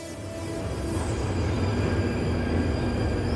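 A train rolls along the tracks with a steady, loud rumble, thin metallic wheel squeals whining high above it throughout; no voices.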